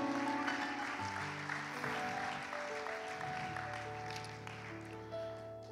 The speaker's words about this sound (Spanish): Give her a big hand. Denle clap. Un aplauso.